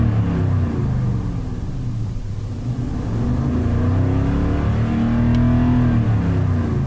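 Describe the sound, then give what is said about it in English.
A car engine, recorded by a microphone on the center console, is started and idles with a deep, steady rumble, then revs up several times, its pitch rising and falling in smooth sweeps, loud throughout. “I just started up and revved it a few times.”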